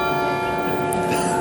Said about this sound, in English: Yeah, no, there's a group of Swiss bucolic farmers and cows revolving around a tower while the bells ring. Right. It's like a cuckoo clock without cuckoos and without a clock. But with bells and farmers.